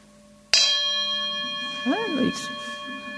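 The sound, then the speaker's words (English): A meditation bell at a meditation centre is struck once, clear, its bright tones ringing on and slowly fading. A brief murmured voice rises faintly beneath the sustained hum. “And this being Gaia House, they have a very nice bell. So you have this very nice sound.”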